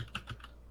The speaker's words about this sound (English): While he Googles with his loud keyboard.